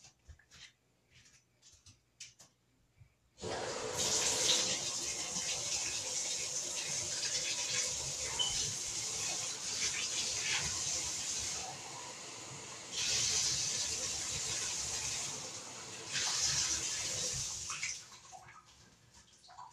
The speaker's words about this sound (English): This is rosé. Rosé. So you fill it up with half champagne and half water.